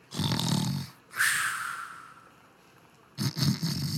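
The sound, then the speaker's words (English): A voice imitates the exaggerated snoring of a bearded dwarf conductor asleep on the ground against a wall: a rumbling, rattling inhale, a long wheezy whistling exhale, then another snorting rumble starting up, loud. “His uniform is unbuttoned with his belly hanging out, and you hear snoring sounds.”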